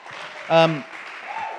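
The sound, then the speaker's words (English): A crowd claps steadily for the Reverend Dr. Winfield Bevins in a dense, even wash of sound, with a short voiced cheer or whoop rising over the applause partway through. “Can we give a round of applause to the Reverend Dr. Winfield Bevins?”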